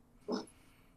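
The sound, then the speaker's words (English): A single short dog bark rings out once against a quiet background, brief and moderately loud, with no one talking. “Goddamn dogs.”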